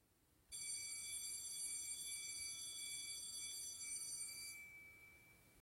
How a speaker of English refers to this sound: The bell rings, and that can only mean one thing. Yes, finally, after a long hour of English, it is time to go outside and enjoy break time.